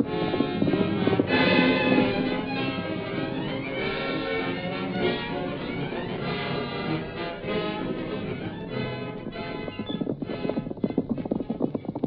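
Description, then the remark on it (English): Ridden horses gallop in pursuit of another horse, with a rapid, rhythmic clip-clop of hooves, steady throughout and sharper toward the end, set against a dense sustained musical background. “If you don't catch up to him soon, my horse will give out. Keep on riding.”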